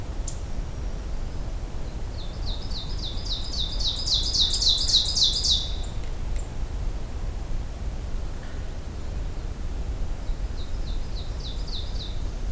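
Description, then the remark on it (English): An ovenbird sings its teacher-teacher song, a rapid series of repeated two-note phrases that builds in loudness, followed later by a fainter repeat of the song over steady background hiss. “This one's the one that you can remember with teacher, teacher, teacher. It always kind of fades in, crescendo.”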